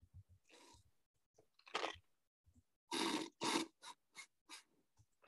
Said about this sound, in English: Just get that nasty slurping sounds all out of the way. Of my drink. Yeah, no, I hear it. Don't worry.